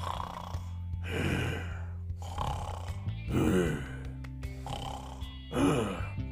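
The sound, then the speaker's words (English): A great, bulking ogre sprawled on its back in oak trees snoring loudly in sleep: four deep, rumbling snores in a steady rhythm, each a rasping inhale roughly every second and a half, prominent with no talking. “The great, bulking beast was sprawled out on its back in the oak trees, sound asleep and snoring.”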